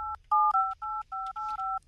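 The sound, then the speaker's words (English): A phone number being dialed on a touch-tone keypad to call a barber's shop on Richmond Road: a quick run of about seven clear, steady beeps at an even pace, fairly loud, with no one talking. “If he doesn't answer this time,”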